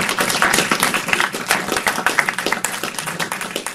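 A crowd applauds steadily, many hands clapping in a dense, continuous patter that stays fairly loud and even throughout the few seconds.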